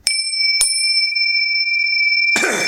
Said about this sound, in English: Why are you coughing? Cuz. Four. Excuse me. The hell was that? Allergies, bro.